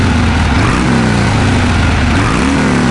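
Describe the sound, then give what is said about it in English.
A loud motorcycle engine revs steadily, its low rumbling drone rising and falling slightly in pitch for a few seconds with no voices. “Flex your engine.”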